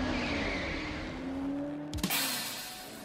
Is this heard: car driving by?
yes